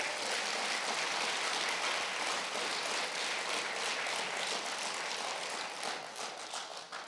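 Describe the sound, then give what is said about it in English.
An audience in Youngstown claps for the city's Street Department, steadily for about seven seconds, a dense, even wash of many hands that stays loud and full throughout, easing slightly only near the end. No one speaks over it. “Give them a big round of applause.”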